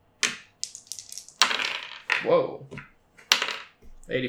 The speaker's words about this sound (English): All right, roll me a percentage dice.